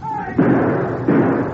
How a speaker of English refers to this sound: Ross stood staring at the cold-blooded way in which the masked man fired two shots after shoving Macy into the rear room.